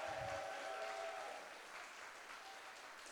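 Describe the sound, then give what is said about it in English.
Sustained audience applause for Pastor Sonny Argenzoni fills the room, a dense wash of clapping that starts strong and gradually softens over a few seconds, with no talking over it. “Can someone give a big round of applause for our pastor, Pastor Sonny?”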